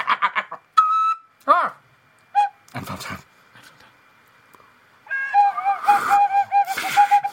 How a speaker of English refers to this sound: I'm trying to whistle with you.